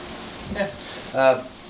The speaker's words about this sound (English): I apologize, it's a little windy today, if you guys can hear.